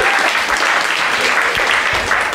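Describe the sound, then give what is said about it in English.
An audience at the Comedy Fight Club show applauds its judges loudly and steadily, a dense wash of many hands clapping with no pauses, sustained at an even level throughout. “But Fight Club, give it up for Dalton and all of our judges.”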